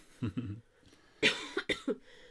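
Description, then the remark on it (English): A person coughs several times in short, harsh bursts, two quick ones followed by a louder cluster of three or four after a brief pause, with no talking. “Did you just cough? I did, I'm sorry.”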